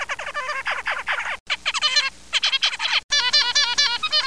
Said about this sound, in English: Here's what a dad zebra finch sounds like when he's teaching his sons to woo the ladies. And here are a few of his sons getting creative.